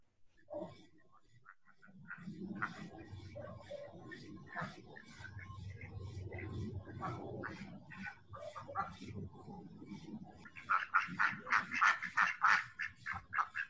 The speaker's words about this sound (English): I'm going to let you just have a minute of listening to ducks.